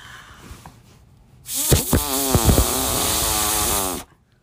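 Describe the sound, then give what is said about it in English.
A voice imitates a fart, its interpretation of a perfect fart, with one long, loud, buzzy raspberry lasting about two and a half seconds, rough and sputtering with a wavering pitch, then it cuts off sharply. No talking accompanies it. “What would be your best interpretation of your perfect fart”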